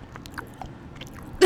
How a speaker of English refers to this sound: That's me chewing a Milky Way.